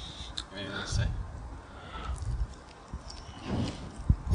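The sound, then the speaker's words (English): The dog Duff licks right up against the microphone, making wet slurping and smacking sounds in irregular bursts, with soft low thumps as its tongue and muzzle bump the mic. “He's licking the microphone.”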